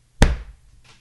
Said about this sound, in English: Woo! Did you hear that? That was me. That was me slapping my chest. Listen.